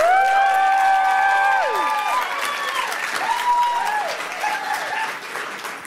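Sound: audience round of applause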